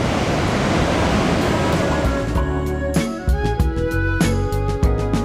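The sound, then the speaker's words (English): A loud, steady roar of big ocean waves breaking at the Steamer Lane surf spot in Santa Cruz fills the first half, then gives way to rhythmic music with sharp percussive hits and sustained tones, with no voices present. “Big waves hit Steamer Lane”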